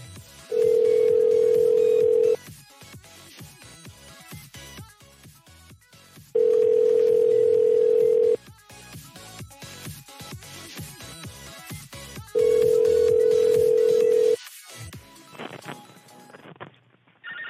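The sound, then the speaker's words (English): A telephone line tone for a disconnected number sounds three times, each a steady two-second beep repeating at even intervals, over a busy background of clicks and clattering noise. “All his numbers are disconnected.”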